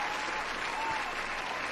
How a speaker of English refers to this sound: But number one in the NFC. Let's get some applause on his name.